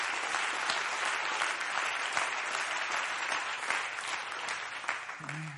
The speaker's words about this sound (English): You're the reason we're celebrating this morning, because you are what make this what it is. Come on, clap your hand to the Lord and give him praise.